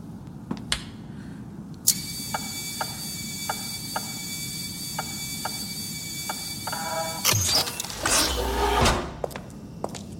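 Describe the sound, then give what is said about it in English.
A steady electronic hum with faint regular ticking runs through, then a loud whooshing, mechanical rush of a door sliding open lasts a second or two before things settle. No one speaks. “Just the door, right?”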